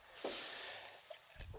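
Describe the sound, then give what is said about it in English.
A big nasal sniff: a long, breathy inhale rushing for over a second, followed by a short snort-like burst at the end. No speech. “He did a huge, huge sniff.”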